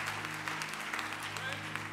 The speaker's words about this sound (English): Let's give the Lord a great big hand clap of praise for that.